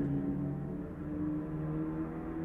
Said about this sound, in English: Some race car, you hear that?